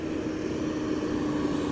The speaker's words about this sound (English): was a fire engine that just went by. The lights are on, but no siren.